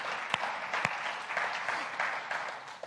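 An audience claps steadily, a dense wash of overlapping handclaps at moderate loudness with a few sharper individual claps standing out, continuing without voices.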